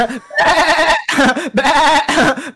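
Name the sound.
sheep bleating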